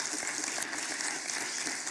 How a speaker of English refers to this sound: There were an average of 225 kids here every day. Oftentimes, yeah, go ahead. You can applaud for that.